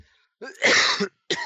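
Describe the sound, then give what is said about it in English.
A harsh, loud cough right up against the microphone, a rough burst that lasts most of a second, followed by the start of another cough after a short pause. “coughs in right in our ears.”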